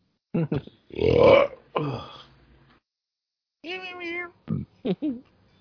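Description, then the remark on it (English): A cat meows several times, one drawn-out wavering cry followed by short clipped ones, after a rough, throaty burst near the start and quiet gaps between. “That is a pretty cat. Meow.”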